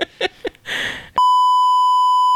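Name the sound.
censor bleep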